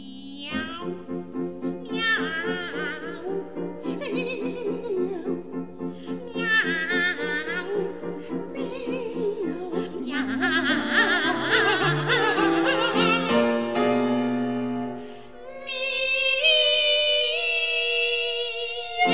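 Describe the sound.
A male soprano sings a string of cat-like meows, imitating a cat with sliding, wavering pitches over a steady low accompaniment, in a piece usually sung by two sopranos. The singing stays loud throughout, briefly dipping before a bright, high final phrase.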